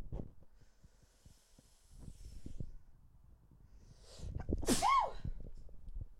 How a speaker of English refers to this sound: But I'm gonna sneeze.